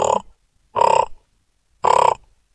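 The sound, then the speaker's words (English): Three loud, harsh raven calls in a steady rhythm, each a rough, throaty croak of under half a second, separated by short pauses with nothing else audible. “But like one morning we were having breakfast, and instead of that, we were listening to sounds from right through the window glass and heard, which is also a raven call.”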